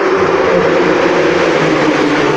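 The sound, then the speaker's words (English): A loud, steady roar of traffic fills an underpass, a dense continuous rumble with a deep low-end hum and no voices, holding an even level throughout. “I'm going into an underpass, gonna get some echoes.”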